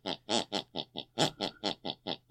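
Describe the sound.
A voice makes snorting, snore-like grunts imitating a mother snoring the last tune she heard before bed. There are about eleven quick pulses in a steady rhythmic pattern that trace the song's beat. Each burst is buzzy and nasal, with no words spoken.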